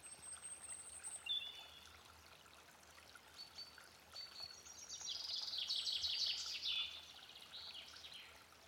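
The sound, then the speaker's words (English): Pigeons and blackbirds singing in woodland: scattered high chirps and whistles, then a louder trilling burst of song midway, all over a soft, steady rushing background like running water. “Pigeons, blackbirds, all sorts going on.”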